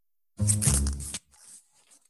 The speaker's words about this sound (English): That is the sound of Jamie Lee Curtis shortening her dress. It is, yes. Yay! Ripping the fluff off.